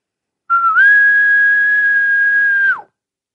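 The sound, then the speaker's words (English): A person imitates a faraway elk bugle with a single sustained whistle that starts lower, rises to a steady high pitch held for about two seconds, then drops off sharply at the end. “zap them with your faraway elk bugle sound.”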